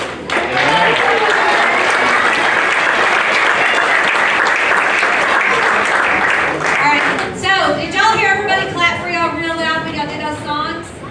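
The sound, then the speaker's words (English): A crowd claps loudly and steadily for about seven seconds after songs were performed, a dense wash of applause that tapers off as a single voice starts talking over the last scattered claps. “They really like those songs that you did, but I think we need to clap for our teachers.”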